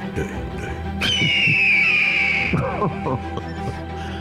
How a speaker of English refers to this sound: Ben Jarofsky, it's an eagle.